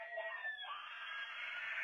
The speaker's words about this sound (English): They're having a fight in there over yelling. She was making dinosaur noises. He started yelling, and now she's yelling because he's yelling.